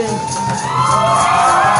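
A subway crowd cheers and whoops loudly, a dense wash of excited voices and shouts rising steadily over two seconds, with a few high yells standing out.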